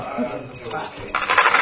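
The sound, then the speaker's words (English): A brief clatter of dice tumbling across a table breaks in near the end and rattles to a stop, with a faint murmur of voices beneath. “as Santa was particularly intimate, he's getting the intimacy dice”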